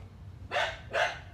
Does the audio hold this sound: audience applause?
no